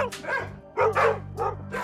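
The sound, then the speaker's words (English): Several dogs bark and yip excitedly in quick, overlapping bursts, fairly loud, with a few higher whiny yelps mixed in, as a bunch of dogs with muddy paws come barreling in and jump all over a person in Tennessee. “Then suddenly a bunch of dogs came barreling in, muddy paws and everything, jumping all over me.”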